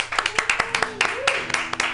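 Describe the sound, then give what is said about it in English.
A small audience applauds a performer, sharp overlapping hand claps in quick irregular rhythm, moderately loud, with a faint voice murmuring underneath. “let's have a nice round of applause for Miss …”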